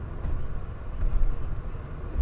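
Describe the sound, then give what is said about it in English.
Steady low rumble of a car's interior while the speaker's dad drives after picking them up, a continuous engine and road hum with no voices, moderately loud and even throughout. “I am in the car. My dad just picked me up.”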